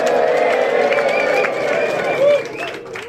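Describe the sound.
A crowd applauds and cheers for about three seconds, a dense, steady wash of clapping mixed with whooping voices that stays loud throughout and swells briefly near the end.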